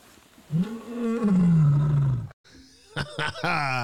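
A lioness lets out a loud roar, a long deep growl that slowly falls in pitch, followed after a brief pause by a few shorter, rougher grunting bursts.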